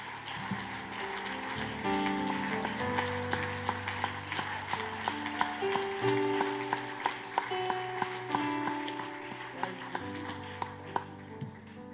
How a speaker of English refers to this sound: Let's clap our hands to the Lord tonight.